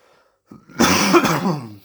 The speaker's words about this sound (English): Fucking sorry about that, I need to just drink some water, coughing like a little slut at the moment.